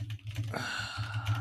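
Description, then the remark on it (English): Typing an intro into a document on a computer keyboard, a steady run of quick, light key clicks over a low background hum, with no one talking. “Why are you typing it?”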